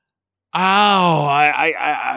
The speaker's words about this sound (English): Have you heard the Golden Gate screaming?